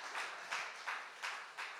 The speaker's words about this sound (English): It was, yeah, you can clap. That's a good place to actually clap. Come on.